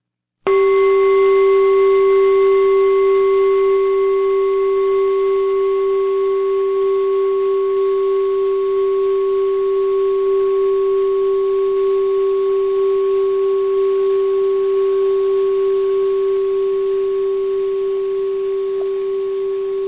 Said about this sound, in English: Even begin to stroke your hands and arms if you want as you listen to the sound of this bell. Listen with all of your intention.